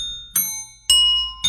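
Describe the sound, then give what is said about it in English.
Three bright metallic bell strikes ring out at roughly half-second intervals as bells are rung for tuning, each with a sharp attack and a clear sustained ringing tone that decays slowly, fairly loud with no talking. “Let's roll into our tuning of the bells this morning.”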